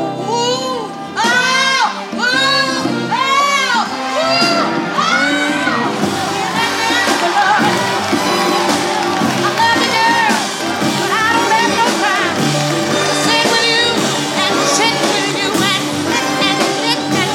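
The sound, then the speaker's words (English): A large crowd at a live concert, during a bluesy song, cheers and shouts loudly throughout, with high rising whoops and screams piling up at the start before settling into a steady, dense roar of applause and yelling. “Listen to the crowd.”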